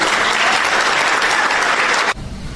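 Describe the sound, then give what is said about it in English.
A crowd in the state of Washington bursts into loud, sustained applause and cheering, a dense wash of clapping that holds steady for about two seconds before cutting off abruptly. “See how happy they are in the state of Washington? You know what they're cheering?”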